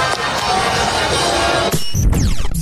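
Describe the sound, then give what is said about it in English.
A loud, sustained roar of a stadium crowd cheering, a dense wash of many voices that cuts off abruptly, followed by low rumbling and scraping noise. “Let's just listen to the crowd here.”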